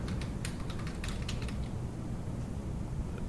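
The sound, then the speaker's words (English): A quick burst of computer keyboard typing by a woman, a dozen or so light, uneven key clicks over about a second and a half, then only a steady low background hum. No one speaks. “Oh, she's busily typing.”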